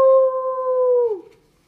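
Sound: voice imitating dogs howling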